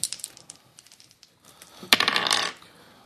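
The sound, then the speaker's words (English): Casino dice rolled during a tabletop role-playing game clatter on a hard surface: a series of small sharp clicks, then a louder burst of rattling and tumbling that settles after about half a second. Fairly loud, with no voices. “We're going to use the totally random ones. Ooh, casino dice.”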